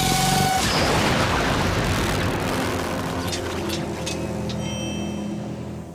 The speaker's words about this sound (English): So the lightsaber blows up.